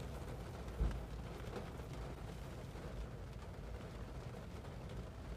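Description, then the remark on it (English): Light rain starting to fall patters steadily, a soft, continuous hiss of drops with one dull thump early on. Nobody speaks. “it's kind of starting to rain now, so my podcast should use a bit loud.”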